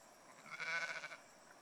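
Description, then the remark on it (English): A single sheep, being called in, bleats once, a short quavering call that swells and fades, soft against a quiet outdoor background with no one talking. “Come on. Come on. Come on, sheep. Good girls.”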